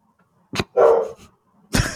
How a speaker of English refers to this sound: You made my dog bark. I don't know how I would have done that. She's trying to make you feel better.